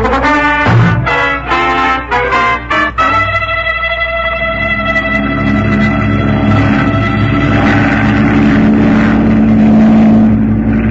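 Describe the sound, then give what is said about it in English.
A flying boat's engines sputter in a few choppy bursts at 5 a.m., then settle into a loud, steady droning hum that holds continuous, with no voices. “How does anybody fish from a flying boat?”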